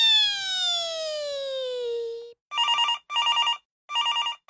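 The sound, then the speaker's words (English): A long descending electronic tone gives way to a phone ringing in three short, trilling bursts separated by brief pauses, loud, with no voices. “Pick, pick, pick, pick up your phone.”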